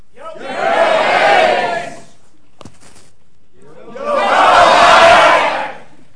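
An audience votes by shouting on which economist was right, Keynes or Hayek, beginning with Keynes: a crowd roars and cheers in a loud, sustained burst for about two seconds, falls silent briefly, then erupts again in a second equally loud wave of shouting.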